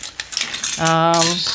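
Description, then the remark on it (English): Big and small metal bulldog clamps and clips clink and rattle together as they are gathered up, a quick jumble of light metallic taps followed by a short ringing tone, with no one talking. “Let's get some bulldog clamps and some big ones and little ones.”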